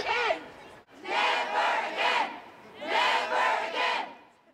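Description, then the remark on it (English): A large protest crowd of up to 20,000 people in the streets roars a rhythmic chant of "never again", loud massed voices surging in repeated three-beat phrases with short pauses between them. “And that was on the streets 3 days later on the Saturday, when up to 20,000 people took the streets and roared, never again, never again, never again.”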